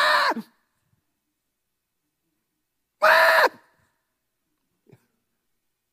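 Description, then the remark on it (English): A voice mimics a baby's scream with two loud, shrill wails, each about half a second long, separated by a few seconds of silence. A faint short sound follows near the end. “it's like they can almost sense you're about to set them down, and they start screaming.”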